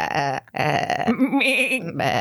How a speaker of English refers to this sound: Yeah, that was the goat. That was the live goats that were saying that. Yes, they're all alive.